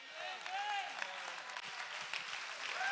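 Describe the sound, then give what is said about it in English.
A church audience applauds steadily to give God the praise, a dense wash of many hands clapping with no break, while a few voices call out and cheer over the top. “Oh, can somebody clap their hands in the back and give God the praise?”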